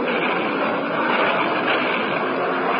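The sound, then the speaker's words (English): Steady, dense engine drone fills the whole stretch, a constant loud roar with no breaks, like heard from inside a propeller aircraft in flight. No one speaks. “Those two planes. They've disappeared. No, they haven't. They're flying in and out of cloud tops at about 17,000.”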